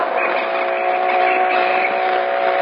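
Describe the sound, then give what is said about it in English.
A car engine drones steadily at speed, going about 80, a continuous, even hum with a buzzing edge that holds throughout, fairly loud, with no voices over it. “Step on it. I'm going 80 now.”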